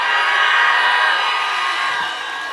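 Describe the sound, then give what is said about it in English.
A large crowd screams and cheers in one loud, sustained roar of many voices, holding steady before easing off slightly toward the end. “It's time to, if you believe it, scream.”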